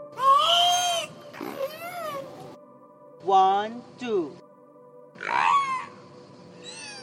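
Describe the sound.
A killer whale named Wiki mimics human speech in a few loud, squeaky, strongly tonal bursts separated by short pauses, each sweeping up and down in pitch like garbled spoken words.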